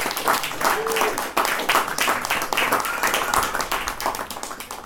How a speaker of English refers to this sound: Then, see, when you turn the page, you're not finished the poem and start clapping because I have one more sentence, I'm sorry.